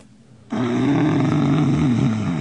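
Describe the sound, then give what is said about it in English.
A person imitates a rhino with a loud, sustained, guttural grunting roar that starts abruptly and rumbles low and steady for about two seconds. “Do a rhino.”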